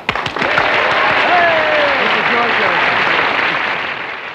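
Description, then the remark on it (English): Dense, sustained studio audience applause, cued on set for the Smothers Brothers show, swells quickly and holds steady for several seconds before easing off, with faint voices and a cheer or two mixed into the clapping. “Okay, cue the clap now.”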